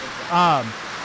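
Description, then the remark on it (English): Heavy rain pours down in a steady, dense hiss, with a short voiced sound briefly rising over it near the middle. “We got a little rained out here and caught up on our beer intake.”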